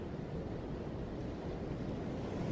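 Ocean waves wash against the shore in a steady, continuous rush of surf, soft and even throughout with no distinct breaks and no voices.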